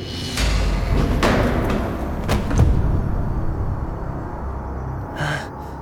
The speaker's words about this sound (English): A large trap door opened beneath his feet, and Icarus plummeted into a dark hole.